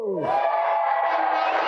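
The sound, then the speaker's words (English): An audience erupts in loud, sustained cheering and whooping for the Ultimate Soccer players of the England and Scotland teams, a dense wall of many voices holding steady for under two seconds. “So please give a big football-like cheer for our Ultimate Soccer players.”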